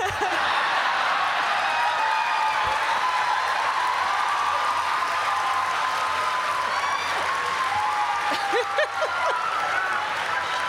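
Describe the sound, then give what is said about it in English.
A large audience claps together along to a song in a steady, dense wash of applause, with crowd voices, cheers and a few whoops mixed in throughout. “We're doing the clap.”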